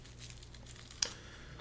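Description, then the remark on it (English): Soft papery crinkling of thin rice rolling papers, a continuous light rustle with one sharper crackle about midway, no voices present. “These are some thin ass papers, dog.”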